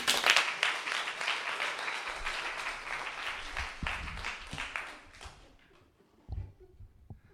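An audience applauds to welcome two guests one morning, a dense, steady wash of clapping that holds for about five seconds, then fades out, leaving a few low thumps and quiet shuffling.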